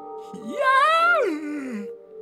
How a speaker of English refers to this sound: I'm gonna yawn again.